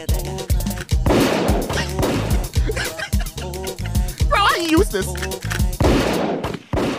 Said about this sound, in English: Gunshot for the body. Gunshot. Gunshot. What? Oh, what's the gunshot?